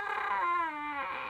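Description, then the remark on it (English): A person imitates a pig squeal with a single high, nasal, whining cry that holds steady for about a second, drifts slightly lower, then cuts off abruptly. “That's a pig squeal.”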